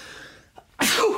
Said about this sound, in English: Sneezing. Oh, wow. Yeah. We're leaving this in, by the way.